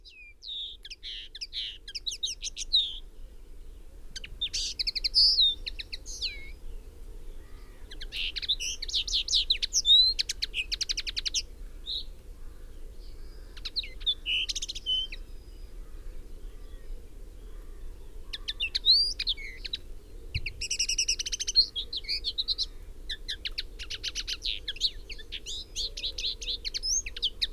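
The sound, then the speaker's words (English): A small songbird, the male with a crimson forehead and coloured breast patches, sings in bright, rapid bursts of high twittering phrases, repeated with short pauses over a steady low background rumble, clear. “Females lack the colour, though, but up close, a still very attractive bird.”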